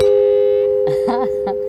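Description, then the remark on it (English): A sound-effects doorbell, used among stage sound-effect props, rings as one steady, unbroken buzzing tone lasting the whole moment, loud, with a few brief murmured voice sounds rising over it near the end. “Let's see, this is a doorbell.”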